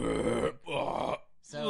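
A loud, low, raspy belch comes in three drawn-out bursts, two longer ones and a shorter final one, each rough and guttural with brief gaps between them.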